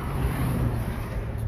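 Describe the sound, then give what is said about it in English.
A steady, low rumble of road traffic fills the short stretch, a continuous broad wash of engine and tyre noise with no distinct pauses and no voices. “We're trying to get away from the traffic so people can hear us.”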